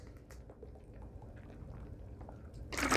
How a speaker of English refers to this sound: All right, just taking a quick sip here.